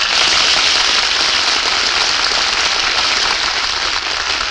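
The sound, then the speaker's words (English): Sustained studio audience applause on the Screen Director's Playhouse radio show, greeting stars Bob Hope and Jane Russell, a dense, steady wash of clapping hands that stays loud and even throughout with no voices breaking through. “Hear that applause?”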